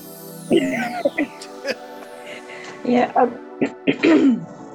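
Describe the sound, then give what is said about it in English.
A person clears their throat in a series of rough, gravelly bursts, some short and some drawn out, spaced irregularly over a few seconds against a faint steady background hum. “Let me clear my throat.”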